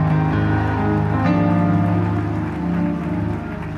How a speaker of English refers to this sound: God bless you. God bless you. Give Jesus a great big hand clap.